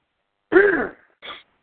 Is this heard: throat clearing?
yes